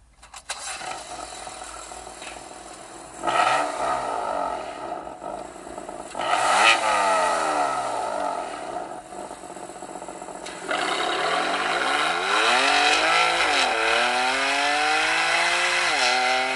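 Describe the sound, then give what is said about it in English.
A car engine idles and then revs hard several times, the exhaust note rising and falling in sweeping pitch bursts before holding a loud, sustained high-rev roar. Loud, no talking. “We all love a good exhaust note”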